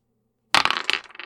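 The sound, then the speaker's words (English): After a brief silence, two dice clatter and tumble across a hard surface in a quick burst of rattling knocks that trails off, rolled in a game and coming up six. “But let's get a roll to see sort of how well it works, how it plays out for you. Sure. Rolling with two dice.”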